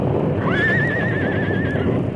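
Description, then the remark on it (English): A horse caught in a river lets out a single high, quavering whinny lasting over a second, its pitch wavering up and down, over a constant loud rush of water. “He and his horse are caught in the river.”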